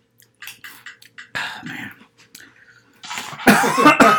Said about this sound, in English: I started to cough.